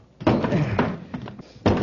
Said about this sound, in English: He's locked the door. Hundley, have you got a key to this door? Sorry, Commander. Chura has the only one. Search him. I'll see if I can smash the door.